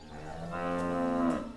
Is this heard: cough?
no